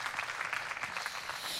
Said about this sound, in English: Guys, we're really grateful for that. Thank you for bringing us into the Spirit of God. Yes, we can applaud that, of course.